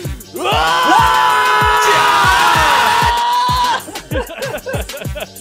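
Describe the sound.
A loud voice belts out a long, strained Dragon Ball-style power-up battle scream that holds for about three seconds over a steady thumping beat, then breaks into short shouts and laughter.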